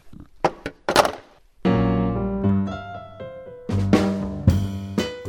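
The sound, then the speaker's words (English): A few quick hollow thunks and knocks as a closed container of cheese covered in oil is set down in a fridge, followed by a steady, layered humming tone that shifts pitch and carries on, with another thud near the end. “Now I'm putting it in the fridge.”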